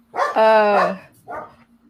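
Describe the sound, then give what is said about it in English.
A dog barks twice at home, first a loud drawn-out bark, then a shorter, quieter one a moment later, over a faint steady background hum. “We love pets here. I have three dogs here, but you know, during the podcast, I hide them so that they just play with themselves.”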